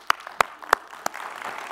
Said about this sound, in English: So if you're an educator, if you'd stand up, all right, and you're going to stand up to a raucous applause, right?